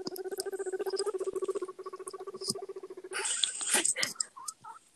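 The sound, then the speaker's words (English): Two guinea pigs, one named Finn, together in the dark. A fast, steady purring chatter lasts a few seconds, then a short burst of crisp rustling and crunching as they eat lettuce for dinner. “Tell me you can't hear the guinea pigs. They're both together again in the dark, eating lettuce together.”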